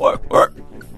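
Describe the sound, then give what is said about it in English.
A voice imitates a pig with two quick, loud, nasal oinks in close succession, followed by a brief quieter tail. “All right, what is pig.”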